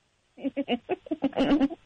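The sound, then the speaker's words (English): A person imitates a dying horse with a run of strained, bleating whinnies, short choppy bursts rising into a longer wavering cry, fairly loud with no other sounds. “You can't mention a sound like a dying horse and then not try it right now.”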